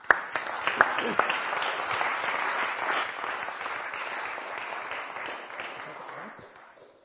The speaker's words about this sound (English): So why don't we give a round of applause for